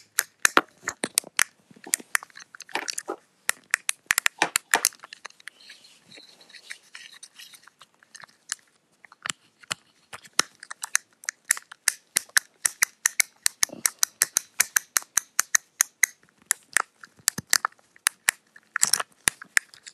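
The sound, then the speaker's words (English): Rapid, irregular plastic clicks and tapping from a fidget cube being fiddled with, bursts of sharp bright clicks with a brief quieter pause midway, no talking. “our next fidget toy is a fidget cube.”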